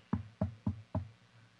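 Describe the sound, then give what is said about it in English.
Four firm knocks on a door by a father in quick, even succession, each a dull wooden thud with a short ring-out, alone with no talking. “And I start to fall asleep, and I get a knock at the door.”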